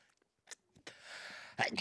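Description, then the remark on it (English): A few sharp, breathy intakes build up to a single loud sneeze that bursts out at the end, with no talking around it. “I'm about to sneeze.”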